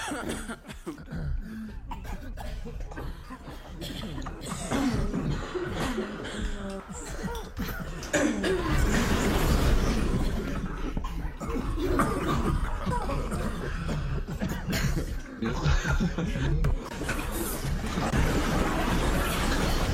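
Several people, including a small child at the end, cough in a loud, busy run of harsh, overlapping bursts, with a few chuckles and throat-clearing sounds mixed in.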